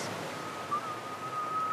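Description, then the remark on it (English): A person whistles while walking: a thin, steady whistled tone starts partway through and holds to the end, fairly quiet against a constant rushing wash of surf or wind noise. No one speaks. “So while we're walking, just have a go at making the whistling sound and let your tongue just move around inside your mouth and say, what can my tongue be doing while I'm still whistling?”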